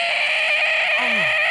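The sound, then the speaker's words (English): A person does a loud, sustained, high-pitched screeching wail imitating a burning cat in agony, harsh and steady throughout, with a lower tone sliding downward near the end. “do the sounds of a burning cat”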